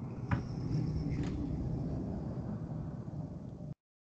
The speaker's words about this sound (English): What was that? It sounded like an airplane. You guys heard that? That was a fucking truck that just like roared by my work. Like he's probably going like. He was probably going like 80.